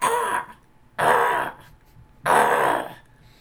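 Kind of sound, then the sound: bird, crow cawing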